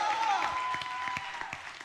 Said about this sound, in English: We just finished up a week of prayer and fasting. Come on, let's hear a cheer for that. Who's excited?